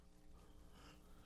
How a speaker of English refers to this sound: You're yawning over your irregular Joe Biden.